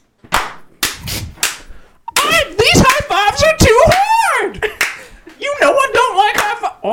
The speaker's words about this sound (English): Have you ever seen a high five that loud? Wow, have you?